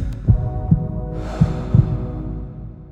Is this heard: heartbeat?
yes